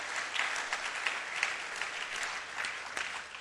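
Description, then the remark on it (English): An audience claps steadily, a dense crackle of many hands at a moderate volume with no voices over it, brief louder bursts rising now and then. “If you're clapping for Jesus, that's a good place to clap.”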